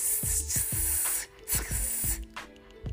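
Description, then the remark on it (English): A voice imitates a snake's hiss: loud, airy sibilant hissing drawn out in several uneven bursts, with short throaty pulses breaking in underneath. “Some church folk, serpents, snakes, they be talking to you, and the whole time you can hear this.”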